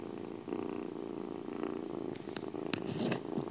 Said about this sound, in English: And I am with my cat, Suki. We might hear him purring, like, just hold on.